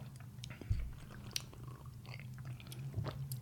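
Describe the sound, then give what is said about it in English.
Quiet mouth sounds of people sipping oat milk, with small wet clicks and swallows scattered over a low steady hum, and no talking. “I'm probably going to pump out a novel real quick this weekend after I have all this oat milk”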